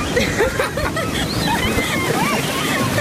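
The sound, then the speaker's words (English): Water sloshes and washes steadily throughout, a dense continuous churning, with faint higher warbling calls drifting over the top. “Oh, water at last.”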